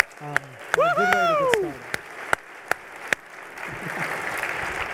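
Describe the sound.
A few sharp, scattered claps ring out and a voice lets out a rising cheer, then broader applause from a standing audience swells and continues steadily toward the end.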